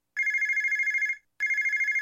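A telephone bell rings loudly in two rapid trilling bursts separated by a short pause, with no voices present.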